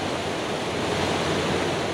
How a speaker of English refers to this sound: The water is overflowing here at Husan Reservoir in Yunling. As it courses over the edge of this weir, an arc-shaped waterfall is created.